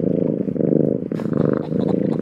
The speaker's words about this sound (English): Oh, yes. This is a happy cat. Ain't no question about that. I agree. I mean, we all know that cats are happy when they purr and angry when they hiss.